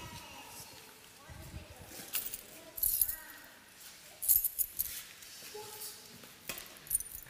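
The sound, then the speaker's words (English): A bunch of keys jangles and clinks in a few short, bright bursts, with a faint voice murmuring underneath between the jingles. “here are the keys to some cities.”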